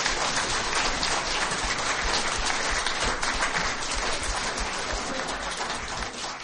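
Sustained audience applause for the election candidates, a dense wash of many hands clapping at steady loudness for several seconds without a break, with no voices standing out.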